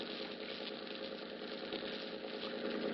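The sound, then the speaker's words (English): A steady engine idles at a low, even rumble, continuous with a faint rhythmic chug: the motor of the boat the Dolphin ticking over as it pulls into Pier 40. “The name on the boat is the Dolphin. It's pulling into Pier 40 now.”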